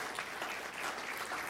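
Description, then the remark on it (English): Steady, dense applause from a church audience, a continuous wash of many hands clapping at once with no pauses, no voices standing out over it. “Let's celebrate and clap and just lose our minds for a moment, because right here, the legacy that is here.”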